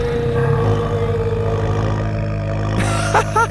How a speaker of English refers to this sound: Bo found himself clinging to the massive head of the giant plesiosaur as it raised its long neck out of the water. Let me down, Bubbles! Let me go! He could feel the vibrations in his legs as the aquatic dinosaur moaned.